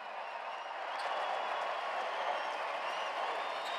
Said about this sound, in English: Well, if you're wondering if Milwaukee would try to sleepwalk through this without marking it, well, here's Joe. Let's listen to the applause.